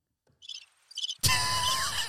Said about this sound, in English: I think I've got a cricket thing here.